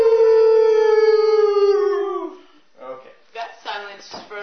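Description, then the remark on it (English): Several voices howl together for Ginger, a hound dog, in a long, loud, sustained dog-like wail that slowly falls in pitch and fades, followed by a few shorter yelps and laughter-like vocal bursts. “Everybody, one howl for Ginger.”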